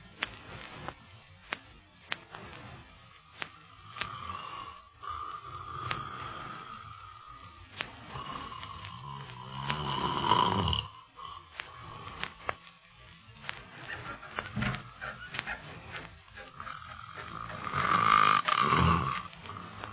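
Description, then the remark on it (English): A man's loud, rasping snores rise into two big roaring peaks about eight seconds apart, with a droning hum in between. The snoring is heavy, and no one speaks. “The way he snores, you should be glad he's in another room.”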